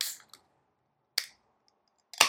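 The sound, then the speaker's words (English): A beer being cracked open: a few short, sharp clicks spaced apart, then a louder snap with a brief fizzing hiss at the end. No one speaks. “But regardless of that, let's crack this open.”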